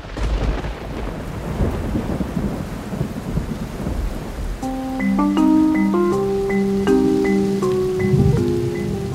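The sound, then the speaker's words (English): Heavy rain pours steadily at Monticello on the third day of the Thorntons' visit, with deep rumbles of thunder rolling underneath; about halfway through, gentle melodic notes rise over the ongoing storm. No one speaks. “All right, so it's still raining out on the third day of their visit.”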